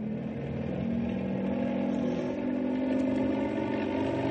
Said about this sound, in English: If the copter vibrates a lot, don't think it's falling apart. I'm going to have to rev it up for better stability. Here we go.